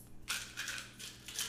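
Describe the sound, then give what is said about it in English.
Ice rattling and clattering in a cup, with a few bright, crunchy bursts of clinking separated by short pauses. No voices. “Ice in a cup, which my dogs love to play around with also.”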